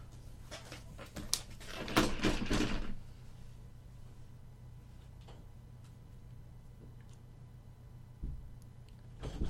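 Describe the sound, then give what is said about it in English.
A door opens with a few sharp clicks and a rattling, scraping burst as someone walks in, then after a quiet pause it closes behind him with a low, muffled thud. Moderately loud, with no voices. “Trenton opens the door. He walks in.”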